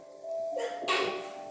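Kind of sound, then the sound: human body sound, sneeze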